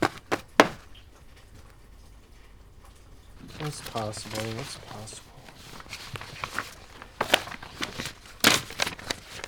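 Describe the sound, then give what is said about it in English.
Papers rustle and shift in short, sharp bursts with quieter crinkling between them as someone shuffles through the papers in a messy top desk drawer, and a low voice murmurs briefly partway through. “I'm sitting at my desk where I record the narration for all my episodes, shuffling through the papers in my top drawer, which is an absolute mess.”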